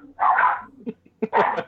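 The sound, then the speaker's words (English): Two sharp, loud dog barks ring out, separated by a brief pause with a few softer grunting sounds in between; no one speaks. “Shut that fucking dog up.”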